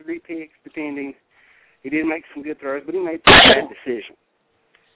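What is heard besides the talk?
sneeze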